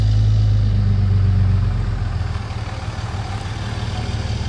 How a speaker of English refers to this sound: Oh, somebody's going to drive by. Lots of big diesel trucks in here, obviously. Such a nice sound, isn't it?